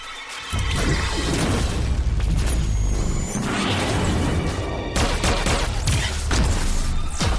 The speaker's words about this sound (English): Oh, so they're just gonna blow up the door? Kill those traitors, then destroy everything inside. The doors are viciously blown off, and laser beams begin to rain upon the heroes.